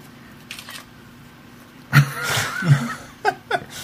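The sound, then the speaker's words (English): Camera shutter clicks come in two quick pairs as someone takes pictures, sharp and fairly quiet, with a short burst of chuckling or voiced sound between them over a low background hum. “I'm taking pictures.”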